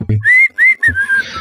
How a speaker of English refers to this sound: I just shut up and ride in silence. I just like start whistling to myself and kind of looking up and around.